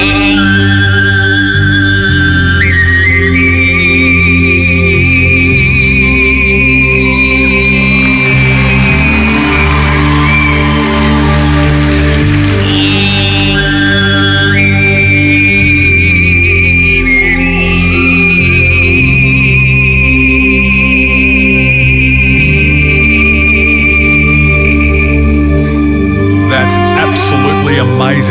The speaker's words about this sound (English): who is a Mongolian throat singer who can simultaneously sing two notes at once. You have to hear it to believe it.